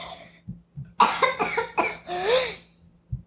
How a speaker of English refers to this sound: All right. So okay, I'm fine now. You're fine. I was just coughing.